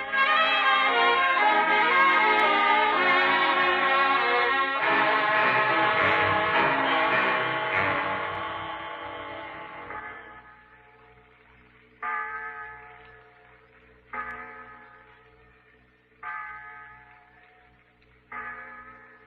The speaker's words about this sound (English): It's the clock in the insurance tower, Pete. 6 o'clock.